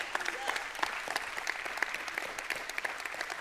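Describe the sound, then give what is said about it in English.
A crowd applauds steadily, a dense patter of many hands clapping at an even level for a few seconds, with no clear voices standing out. “Man, y'all are an exciting crowd today.”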